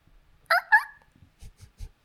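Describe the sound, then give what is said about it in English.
A tiny dog gives two quick, high-pitched squeaky yips close together, followed by a few soft, low thumps; fairly quiet, with no talking. “Very tiny, tiny squeaky dog.”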